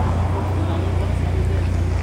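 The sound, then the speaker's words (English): A car backing out: a steady, deep engine rumble that holds an even, fairly loud level for the whole two seconds, with a broad wash of road noise above it. “Oh, there's a car trying to back out.”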